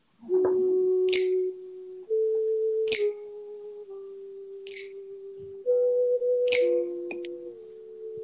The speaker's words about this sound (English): Okay, this is my alarm. Mm-hmm. I hear this in the morning.